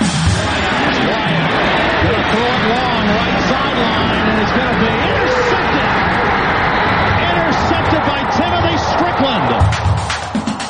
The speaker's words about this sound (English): Ole Miss is coming out on the field, and they'll be greeted with the familiar Bronx cheer. That, too, is traditional, just as other things are in this thing called the world of sports.